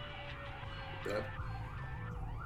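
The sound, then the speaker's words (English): Four emergency sirens wail in the distance outside a house at once, their overlapping rising and falling tones steady and fairly faint over a low rumble of background noise. “It sounds like four different sirens going off in the distance.”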